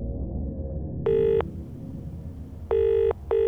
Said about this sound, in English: And one day, the phone rings.